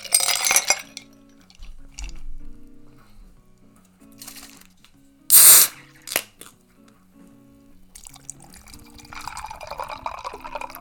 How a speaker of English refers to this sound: Of course, my Starbucks nitro cold brew, which has been the regular lately. Which I do think I will pour up right now. Here's an ice drop for all of you. Put some ice in my coffee cup.